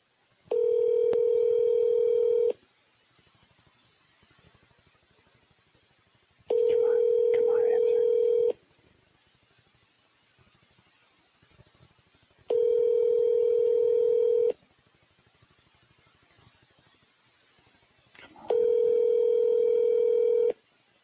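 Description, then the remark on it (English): An outgoing phone call rings out unanswered: four long, steady electronic ringback tones, each about two seconds, separated by quiet pauses of roughly four seconds, heard clearly through the handset. “Let's call him.”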